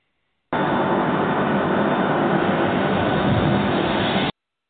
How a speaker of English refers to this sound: REPA 32, you're clear to start engines. Roger, we're starting number one. Clear prop.